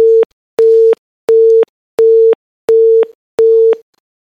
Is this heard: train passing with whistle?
no